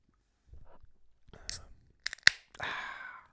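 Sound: beer can cracked open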